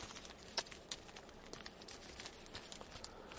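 Soft, irregular crinkling of plastic packaging as someone tugs and pulls at it, trying to open it by hand inside a car parked under a tree, with a couple of sharper crackles standing out among quieter rustles, without talk.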